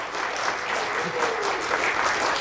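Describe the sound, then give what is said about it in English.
A crowd at a Scarathon film screening applauds Jeff in the projection booth, a dense wash of many hands clapping at once, with faint cheering mixed in; the clapping stays loud and even throughout. “Again, give it up to Jeff. I see him in the projection booth. Let him hear it.”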